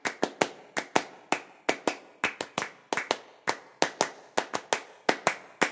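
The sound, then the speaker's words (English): Sharp hand claps ring out in a steady, interlocking rhythmic pattern, with pairs and clusters of claps repeating in a brisk pulse. No voices, just bright, crisp clapping throughout. This is Clapping Music, a minimalist piece by Steve Reich written in 1972. “I thought we could look at a favourite piece of ours, Clapping Music, written in 1972.”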